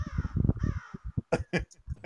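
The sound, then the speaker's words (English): Harsh, raspy bird screeches ring out loud: two long drawn cries first, then a quick series of shorter, choppy squawks, with no voices present. “It's a fucking seagull. That's a screaming eagle.”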